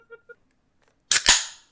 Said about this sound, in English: That was me opening a can. I love when you have to edit those out.